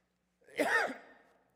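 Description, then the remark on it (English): One short, throaty cough during a Christmas Sunday service at an evangelical church, a quick burst that fades out over a breathy tail, with quiet all around it and no talking. “And as you've already heard, I'm going to cough.”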